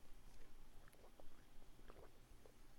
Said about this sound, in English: You got to take a sip of water after that.